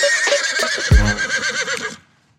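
A horse whinnies loudly, a bright quavering neigh lasting about two seconds with a low snort-like thump partway through, then silence.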